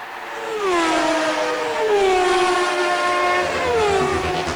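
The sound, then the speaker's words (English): Cars of Premier League football referees rush past one after another toward a new facility, each engine whine swooping down in pitch as it goes by, over a steady loud roar. No voices. “Now, those cars are the sounds of the cars from football Premier League referees rushing down to a new facility they've got.”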